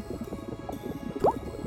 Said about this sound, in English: She dropped the marble into the cauldron. As it hit the bubbling water, it occurred to Peyton that she didn't know what to do with the twine listed in the ingredients itself.